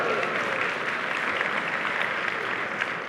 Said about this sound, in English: I really didn't do anything, but thanks for clapping.